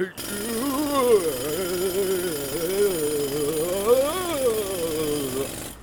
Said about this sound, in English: From his cloak, Odin pulled out an auger. You can drill a hole in the mountain with this, right through to where the mead is.